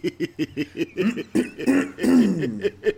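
A person clears their throat: a quick run of short, raspy bursts followed by longer, gravelly hems, fairly loud and performed deliberately, with no other talking.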